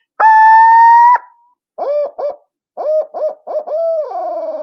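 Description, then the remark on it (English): A turkey hen call opens with a long, loud, steady scream, breaks off, then rolls into a string of short hitched notes that slide downward at the end. No one talks over it. “It doesn't really have a name, but they'll scream and then go into this note. And this also adds a little flair, a little more aggression that could jerk a gobble out of one.”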